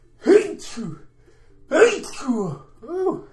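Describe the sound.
Two loud sneezes about a second and a half apart, each a voiced intake bursting into a sharp, breathy blast, followed by a brief throaty sound as the person recovers.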